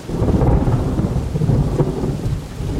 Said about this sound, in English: A shelter I built out of leaves in a fallen tree has blown away. I need new shelter. And quick. The storm is mayhem.